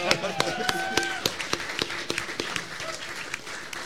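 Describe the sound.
Scattered applause, sharp claps landing irregularly from a small group, with voices murmuring and calling out underneath.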